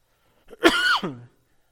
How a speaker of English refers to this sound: And please forgive me for coughing.